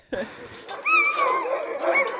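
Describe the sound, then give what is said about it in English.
A sled dog puppy yips and whimpers, with high, wavering whines rising and falling across a couple of seconds after a short sharp onset. “Before long, these dogs will join their relatives out on the trail, carrying gear and carrying on a tradition more than a century old.”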